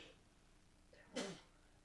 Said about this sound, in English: Excuse me, pardon me. Let me sneeze there.